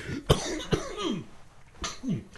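A person coughs hard several times in a short, uneven burst, with strained, wheezy breaths between the harsh hacks, heard close up.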